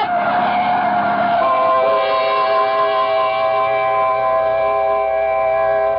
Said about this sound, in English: Mildred, look out! The truck! Look out for the truck